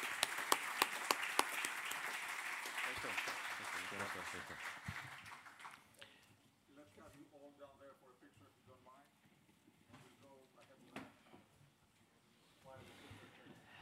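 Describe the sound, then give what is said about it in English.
An audience breaks into applause for the panelists at the end of a panel discussion, a dense burst of many hands clapping for about six seconds before it fades out and a man begins speaking. “So I'd like to thank all panelists for very interesting views shared here, and we will all need to give them a round of applause for all the efforts.”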